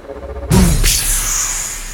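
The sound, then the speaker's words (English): Glass shattering as metal-gloved fists punch through the glass of a cruiser's front observation deck: a sudden heavy thump, then a bright, crackling burst of breaking glass whose high, glittering tail lingers and slowly fades. No voices are present. “As soon as the clear pod reached the front observation deck of the cruiser, the Rocket Man ejected and punched through the glass with his metal gloves.”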